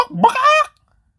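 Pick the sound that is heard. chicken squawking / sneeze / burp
chicken squawking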